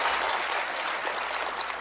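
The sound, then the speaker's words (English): A crowd bursts into steady applause for a question about safety in schools, a dense wash of overlapping claps holding at an even, fairly loud level throughout with no speech over it. “Applause, everybody.”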